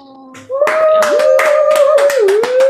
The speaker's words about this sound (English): But let us begin, as everyone begins to, like, clap. Yeah.